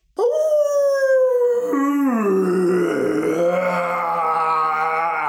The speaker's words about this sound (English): When the wolf realized what had happened, sunrise was approaching and it was too late. He howled with rage.